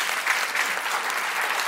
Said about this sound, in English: Oh, thanks for the round of applause.